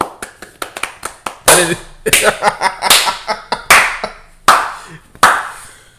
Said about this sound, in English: I'm sorry, can we clap it up for copyright infringement?